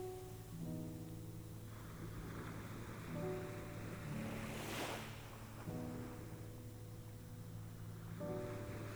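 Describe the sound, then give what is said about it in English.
Gentle aquamarine ocean waves wash slowly over flat sand, a steady low surf with one fuller swell cresting midway. Faint tonal hum and light wind sit beneath the water, with no voices. “Gentle aquamarine waves glide slowly over the flat sands.”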